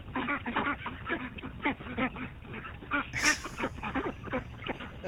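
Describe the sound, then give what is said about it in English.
A flock of ducks quacks continuously in loud, overlapping bursts, with a rough rhythmic chatter throughout and no voices. “And now, a birthday message from some ducks.”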